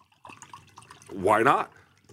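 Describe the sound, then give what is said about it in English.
Water is poured into an empty coffee cup in a short burst, its gurgling pitch rising as the cup fills, after some quieter background murmuring. “Your water looks fucking gross. Well, I put it in an empty coffee cup.”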